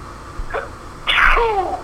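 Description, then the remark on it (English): A single loud sneeze: a short breathy intake followed by a sharp burst that trails off into a falling vocal tone, with no talking around it. “Bless you.”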